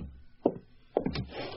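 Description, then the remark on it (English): A door being opened: a dull wooden knock, then a second thump and a short rattling clatter of the latch, followed by a faint hiss of background noise. No one speaks. “I'll get the door.”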